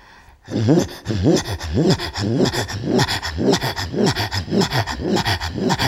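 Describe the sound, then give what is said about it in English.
A singer, using only the mouth, alternates low, deep guttural tones with sharp, quick inhaled gasps between them, looping in a fast, steady rhythm of about two cycles per second throughout, with no talking. “And then there's some of the songs have only deep tones, and then you teach yourself to inhale very sharply and quickly in between the sounds.”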